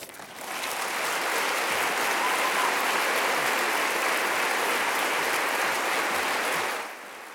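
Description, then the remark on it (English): A large lecture audience in Nebraska applauds steadily to welcome a speaker, a dense wash of clapping that swells in quickly, holds at full strength for several seconds, then tapers off near the end. “Now join me in welcoming Ben Skinner to Nebraska.”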